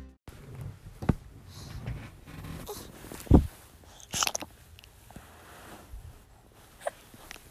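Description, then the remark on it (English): Several short, abrupt hiccups pop out at irregular intervals over a quiet background, one noticeably louder and sharper than the others, with no talking in between. “Got hiccups? You got hiccups?”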